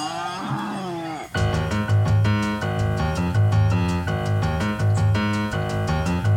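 A short, low mooing call with a bending pitch lasts about a second, then cuts abruptly into loud, rhythmic music that plays to the end.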